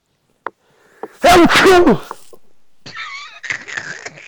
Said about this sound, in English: What was that? No, it was a sneeze. I tried a vampire sneeze, but the mic is right here. A vampire sneeze. That's what it's called. Or is it Dracula cough, whatever?